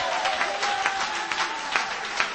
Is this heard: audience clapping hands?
yes